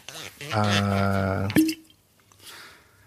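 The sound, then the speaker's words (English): Whiskey is poured into a glass in a short burst of splashing, ending with a sharp clink, while a low steady hum runs underneath, fairly quiet. “I'm pouring myself more whiskey because I need it.”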